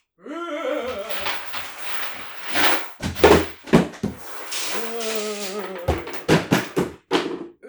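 A person trips over a string and knocks over a scarecrow made of a broom handle and pumpkin shell: a rising shriek, then a burst of loud thuds and clattering knocks, another strained cry, and a final series of sharp bangs.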